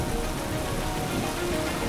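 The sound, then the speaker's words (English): Torrential rain from Hurricane Harvey coming ashore on August 25, 2017, with 130-mile-an-hour winds, pours down in a dense, steady hiss, loud, with no breaks across the two seconds and no voices. “The day of torrential rain and 130-mile-an-hour winds when Hurricane Harvey came ashore.”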